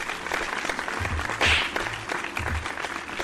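round of applause

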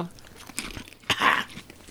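chewing crunchy crackers

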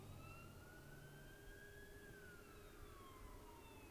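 fire truck siren approaching

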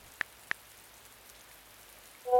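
rain falling

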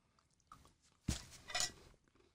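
chewing crunchy food

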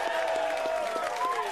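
audience applause

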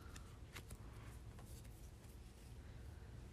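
shuffling tarot cards

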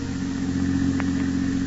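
car engine running

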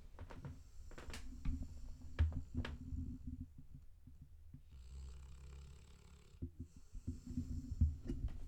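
dog snoring

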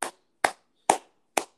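hands clapping

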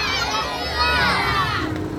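audience shouting hallelujah

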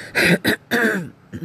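throat clearing

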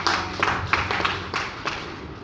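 audience clapping

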